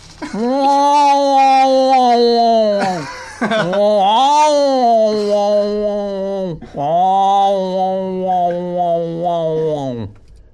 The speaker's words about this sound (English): That's basically the sound our other cat makes. That's what Tigger makes? Yes, Tigger makes that sound.